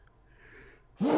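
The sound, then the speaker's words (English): After a faint, breathy intake, a single sneeze bursts out suddenly and loudly, cutting through the near silence. “Bless you.”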